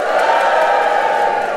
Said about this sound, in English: Give me a cheer if you're here to see Beef and Dairy Live.